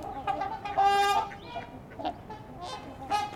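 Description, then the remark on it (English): Harsh, nasal herring gull calls repeat several times, a long strident cry near the start followed by shorter squawks, loud against an outdoor background. “I think that was a herring gull.”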